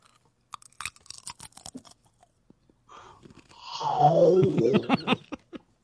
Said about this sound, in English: So you can just crunch it, dude. Just go ahead and eat it. You don't have to be quiet about it.